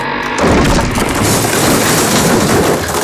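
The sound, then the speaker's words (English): A bridge collapses and falls into the street below with a loud, booming crash, followed by a sustained roar of tumbling debris and rubble as it shatters into a heap, heavy, with no voices. “Below, the bridge plummeted into the street in a shattered heap.”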